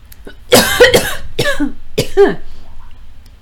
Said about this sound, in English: And those of you on the stream heard it. That is what you call a cough. You did not get the pleasure of hearing that.